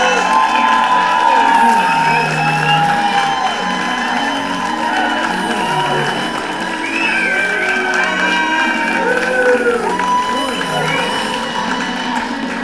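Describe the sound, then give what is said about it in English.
A crowd cheers and claps loudly and steadily for a comedian's introduction, with overlapping whoops and high shouts rising above a dense wash of applause. “I'm like, boy, they're clapping hard for my intro, man!”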